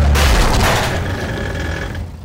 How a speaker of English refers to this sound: When the fender of the truck hits Lillian's bike, the force is enough to crumple the frame. Lillian is catapulted from the saddle and sprawls onto the road just ahead of the truck.